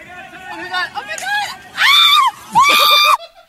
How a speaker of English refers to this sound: Oh my god! Just slammed into a bank of trees. Friend's scream describes it all.